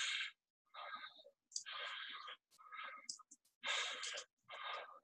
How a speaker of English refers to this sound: I don't know whether you could see or hear that to get the idea of the rhythm, but it's quite a soft breath, even though it's quite fast and full.